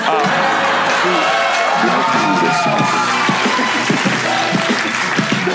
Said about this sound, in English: Sorry, I know you guys wanted to clap, but everything I'm going to say is going to be amazing.